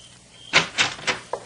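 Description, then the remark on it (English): A door being opened, heard as three fairly loud, evenly spaced clunks over about half a second, with a fainter click just after, with no voices. “get decent and open the door.”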